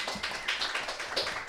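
Audience applause for a guest: a dense, steady patter of many hands clapping, bright and crisp, holding at an even level for a moment with no voices over it.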